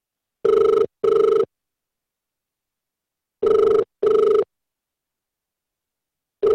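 A telephone rings at the start of a prank call, in the classic double-burst pattern, two short tones, a pause, two more, then a third ring beginning at the end. Steady, fairly loud electronic ringing with no voices.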